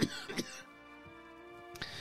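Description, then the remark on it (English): A person coughs and clears their throat in a few short, rough bursts, with a pause between them while a steady, soft tonal hum continues in the background. “And Monday morning, we're back, and hopefully by Monday, this cough will be gone.”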